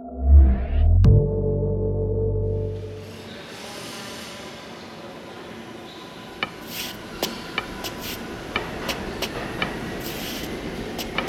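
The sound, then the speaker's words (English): A subway train pulls out of the station: a deep rumble and heavy clunk, then a rising motor whine giving way to steady rattling and sharp wheel clacks on the rails. “Stop the train!”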